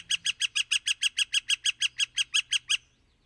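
A northern flicker (high-hole) gives its loud, strong, sonorous call from the wood: a rapid, steady run of about fifteen ringing, identical notes that stops abruptly, clear with no voices.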